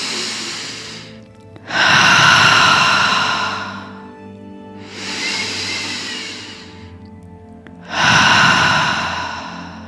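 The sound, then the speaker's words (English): Slow, deep breathing: long airy inhales through the nose and exhales out the mouth alternate in a steady rhythm, about four full breaths with brief pauses between, and no talking. “A nice deep inhale through the nose, a nice deep exhale out the mouth.”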